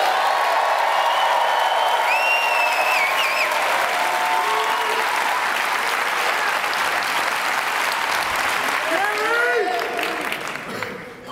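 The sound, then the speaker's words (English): A large audience applauds the volunteers loudly and steadily for about ten seconds, with a few whoops and shouts rising above the clapping before it starts to fade at the end. “So at the same level of excitement that you just gave me, let's clap it up for the volunteers.”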